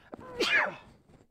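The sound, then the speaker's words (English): A single sharp, explosive sneeze with a short inhaled lead-in, loud, then quiet. No one speaks during it. “Bless you. Thank you.”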